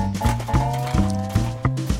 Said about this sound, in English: I hear some horses cantering, trotting, yes.